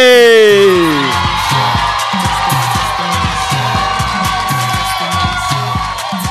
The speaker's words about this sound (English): So I want you to clap your hands and I want you to shout.